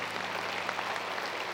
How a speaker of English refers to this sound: So we need to do that right now too. So why don't you give a big round of applause for those who just gave their hearts to the Lord.